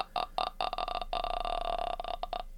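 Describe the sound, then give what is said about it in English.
A voice imitates the guttural, rattling throat croak from the horror film The Grudge: a stuttering series of harsh clicks breaking into a sustained creaky rasp, fairly loud with no talking. “I started hearing the Grudge throat guttural noise in my ear.”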